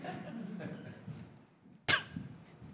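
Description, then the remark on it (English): A single sharp sneeze bursts out from someone in the audience at a church sermon, sudden and fairly loud against a low, muffled voice murmuring before and after it. “God bless you.”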